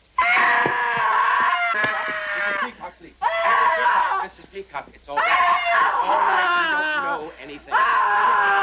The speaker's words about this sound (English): I had to stop her from screaming.